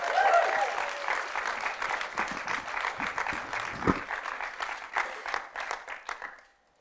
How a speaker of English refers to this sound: So as I invite each one up, it can be quite a nerve-wracking thing to do if they're not used to doing this. So why don't we give them a huge round of applause?